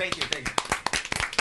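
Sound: people clapping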